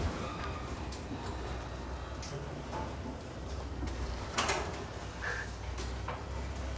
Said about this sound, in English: G'day, how are you? And the garage door opens.